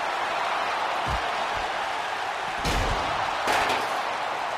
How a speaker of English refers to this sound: Kenny Omega grabs a chair. Kenny Omega's going crazy. Kenny Omega's hit every single competitor in this match with the chair. And he's attacking the Godfather.